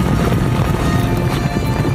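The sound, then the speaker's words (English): Hooves of several horses ridden by cowboys gathering cattle clomp steadily, a dense rhythmic clip-clop of animals moving together outdoors, with a faint rush of wind underneath and no one talking. “Lad and the cowboys are gathering some cattle”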